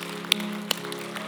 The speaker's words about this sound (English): Can we clap our hands to the Lord in dismissal this morning?